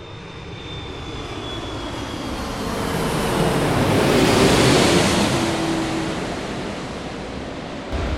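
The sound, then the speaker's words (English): Steady wash of ocean surf as an airplane passes overhead, its engine roar swelling to a loud peak midway, then fading, with a thin high whine early on and no voices. “It's like being at St. Martin, isn't it? Yep. With the planes flying over.”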